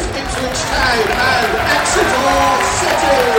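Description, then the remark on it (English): A football crowd applauds and cheers as the Exeter City and Ipswich Town teams come out, the main stand standing and the big bank applauding, a steady, loud wash of clapping and mingled voices that swells slightly and holds throughout. “Well, here come the teams, and the main stand stands. The big bank applauds.”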